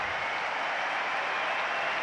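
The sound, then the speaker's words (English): A dense, steady wash of applause from a large crowd all around an arena at the London 2012 Olympics, continuous and fairly loud throughout with no distinct voices standing out. “Huge applause all around the arena.”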